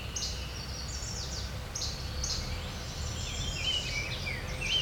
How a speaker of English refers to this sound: It's now detected. Orchard oriole. Just still around here somewhere.